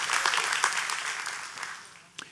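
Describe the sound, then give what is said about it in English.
A church audience applauds to thank God for getting through a storm, dense clapping from many hands, steady at first and then tapering off toward the end, with a few last claps trailing. “Can we give the Lord a big hand clap for that?”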